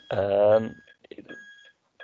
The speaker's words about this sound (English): I'm getting distracted by beeping.